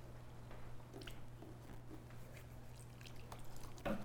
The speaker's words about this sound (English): gets soap on her hands and a little water to make it lather, then we'll start the countdown.